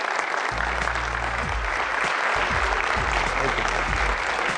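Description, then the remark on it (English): A steady round of applause from an audience for a Herkimer college alumnus in both its Alumni Hall of Honor and Athletic Hall of Fame, dense and sustained clapping filling the whole stretch, with a low hum underneath and no voices breaking through. “So I think we owe him a round of applause.”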